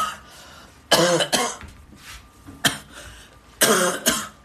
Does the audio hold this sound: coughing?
yes